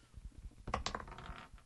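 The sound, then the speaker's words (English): Runic dice clatter and tumble across a hard tabletop, a burst of sharp clicks and rattles that settles quickly, fairly quiet, with no one talking. “Damn runic dice. Okay, so that's a 12.”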